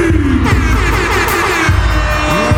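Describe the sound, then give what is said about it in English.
Several sharp fireworks bangs burst at uneven intervals inside a large basketball arena as the Toronto Raptors starters are introduced at a playoff game, each one loud and booming over a constant roaring, cheering crowd. “Fireworks inside, and it was fine.”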